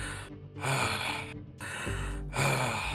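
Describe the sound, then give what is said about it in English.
Heavy, ragged breathing: about four loud, airy inhales and exhales in a steady rhythm, each breath rasping and gasping, with no talking. “Heavy breathing.”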